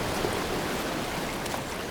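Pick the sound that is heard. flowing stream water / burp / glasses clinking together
flowing stream water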